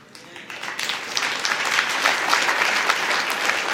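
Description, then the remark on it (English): An audience gives a polite golf clap, starting soft and quickly filling out into a steady, even patter of many hands clapping that holds for a few seconds. “Golf clap.”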